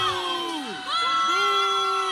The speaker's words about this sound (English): Here are students booing as he walked across the stage, and a student that witnessed the act breaking down exactly what happened.